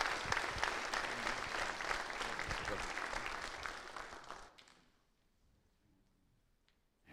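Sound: audience applause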